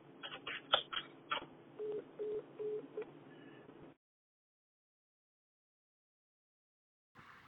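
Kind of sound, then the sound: signal or alarm, phone call hung up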